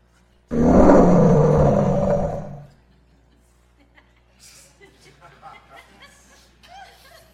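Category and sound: animal, lion roaring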